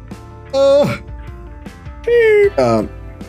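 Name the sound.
yawn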